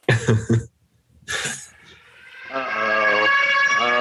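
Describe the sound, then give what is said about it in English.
A siren passing outside swells up and holds a loud, steady, brassy wail in the background, following a few short bursts of voices and a brief noisy rush. “Uh-oh. Sirens?”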